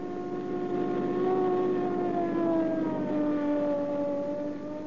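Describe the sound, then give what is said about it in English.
A police car siren, responding to a bank holdup at 7th and Hoover, wails steadily, its rich harmonic tone drifting slowly downward in pitch over a low rumbling engine, loud and continuous with no voices. “Here's the cops already.”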